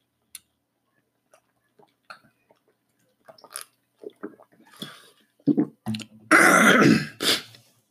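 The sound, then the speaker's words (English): Someone drinks water: a few faint clicks, then a run of soft sips and swallows, finished off with a loud throat clearing. No one speaks. “Hold on, I need to drink some water.”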